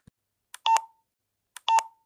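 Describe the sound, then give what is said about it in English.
Two short electronic telephone dialing tones of a phone call sound a second apart, each a quick bright burst with a brief trailing beep, clear with no voices around them. “Okay, get ready to hear the rest of the phone call.”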